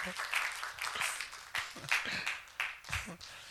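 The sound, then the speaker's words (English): An audience claps for the Lord during a sermon, a dense, steady patter of many overlapping hands, fairly loud and continuous, with a few voices faintly mixed in. “Clap for the Lord. Clap for the Lord.”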